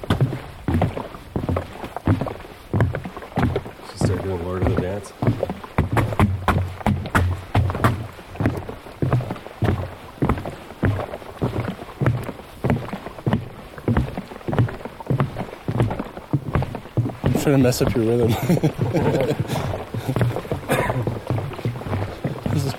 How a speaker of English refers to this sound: It sounds cool in the microphone when you're listening back. The sound of my water sloshing around.